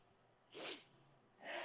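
Two short, sharp sneezes, the second following about a second after the first, each a sudden breathy burst, fairly soft, with no talking around them.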